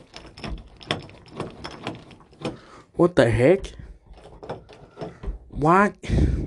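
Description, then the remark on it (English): The handle of a locked studio door is rattled and jiggled in a quick run of sharp metallic clicks and clunks, then a voice exclaims in surprise, with a few more rattles following. “I'm just going to open my door now.”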